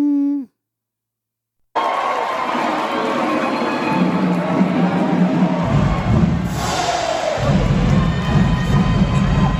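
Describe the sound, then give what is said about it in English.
A large crowd on the Atlanta University campus cheers and shouts loudly, greeting Atlanta Mayor Andre Dickens, in a sustained, dense roar that swells and continues for several seconds after a brief tonal snippet and a moment of silence. “The greeting he got from the Atlanta University campus crowd.”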